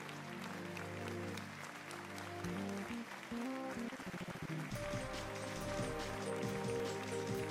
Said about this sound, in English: One more time, give yourselves a round of applause. Thank you. Thank you.